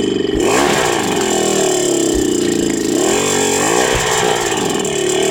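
A two-stroke engine runs loud with piston slap caused by a worn cylinder bore, a rapid metallic tinkling riding over the engine note as the revs rise and dip slightly throughout.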